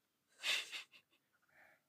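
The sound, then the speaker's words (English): A heavy, forceful breath of air rushes out, then a few short, softer puffs and a faint trailing exhale, quiet, with no talking. “You're smiling, like you're breathing heavy, bro.”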